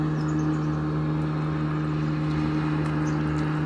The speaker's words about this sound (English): Lots coming into the field right now. Powerful aromas of water plants, another engine revving up.